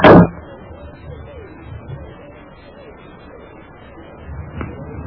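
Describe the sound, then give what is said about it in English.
An old man opens a door wide with a sharp, loud clunk right at the start, then a quiet room hum with a faint murmur and a soft click near the end. “The old man opened the door wide.”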